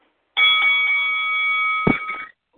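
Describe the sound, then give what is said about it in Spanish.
A loud, steady bell rings continuously for about two seconds at a bright, high pitch, with a brief thump near the end before it cuts off. No one speaks. “Ok, ya tú sabes, Raya, el sonido de la campana para adelante.”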